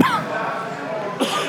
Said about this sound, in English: Pardon me. Coughed right into the microphone. Please, everybody, excuse that.